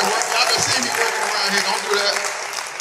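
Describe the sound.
A crowd claps steadily for about three seconds, a dense, even wash of applause at moderate loudness with a few voices mixed in.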